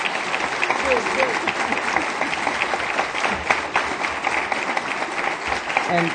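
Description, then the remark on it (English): Sustained applause from a sizeable audience for the panelists at the close of a conference, a dense steady patter of many hands clapping at even loudness throughout, with faint voices mixed into the crowd noise. “A big round of applause to our panelists.”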